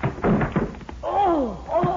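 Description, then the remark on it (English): A few heavy, dull thuds land in quick succession as someone rams a shoulder against an 8-inch-thick locked door, trying to knock it open, followed by a loud, strained groan of pain. “I'm going to try to knock that door open.”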